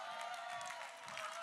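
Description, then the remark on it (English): An audience claps after a pastor mentions being married to the same woman for 46 years, a steady, dense patter of many hands for a second and a half, with no voices over it. “Too late, you had to think about it to clap.”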